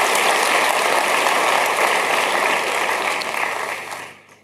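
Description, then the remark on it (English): An audience claps together for Jesus in a dense, sustained burst of applause that stays loud and steady for about four seconds, then tapers off toward the end, with no voices heard. “Let's give a hand clap to Jesus.”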